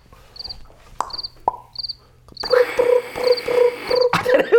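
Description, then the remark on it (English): A voice imitates a gurgling cricket: evenly spaced high chirps at first, then a louder, bubbling gurgle of rapid repeated pulses that continues close to the end. “I was a gurgling cricket.”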